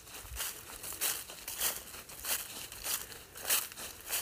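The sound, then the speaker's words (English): Footsteps crunching through dry fall leaves while walking on a mountain, about seven crisp, crackly steps in a steady walking rhythm, each a brittle rustling burst over a soft, constant hiss of wind in the leaves, with no voices. “You hear me crunching all the fall leaves?”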